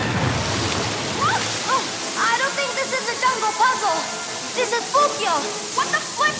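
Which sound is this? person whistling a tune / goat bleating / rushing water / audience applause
rushing water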